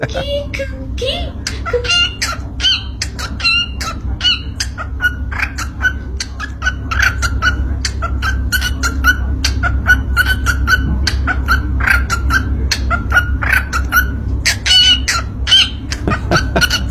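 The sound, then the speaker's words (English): A small yellow parakeet with red dots on its cheeks chirps and whistles while making rapid, sharp clicking sounds in a steady beatbox-like rhythm, with a low hum underneath throughout. “And this thing not only whistles, but can beatbox as well. You ever heard a parakeet beatbox before?”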